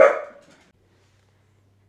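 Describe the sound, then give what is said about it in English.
A single sharp bark from Archie the dog, loud and sudden, fading out within about half a second, followed by a faint low hum and no voices. “Archie has something to say to y'all.”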